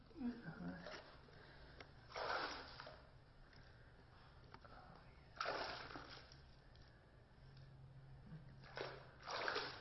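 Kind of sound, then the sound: nature, water splashing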